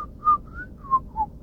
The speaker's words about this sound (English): Now what are you doing? Just drawing a maze. But that extracurricular whistling.